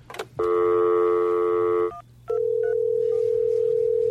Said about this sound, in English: maybe you should answer the phone, like at the Todd Glass show, so it seems professional